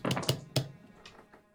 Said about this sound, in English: Lots of dice fell out.